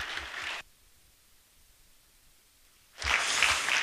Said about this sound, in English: Let's give our God one more applause.